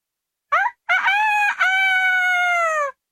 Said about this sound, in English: But in the morning, the cockerel of the potter's child began to crow.